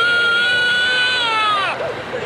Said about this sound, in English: If those cries sound disturbingly real, it's because they're recordings of actual babies crying.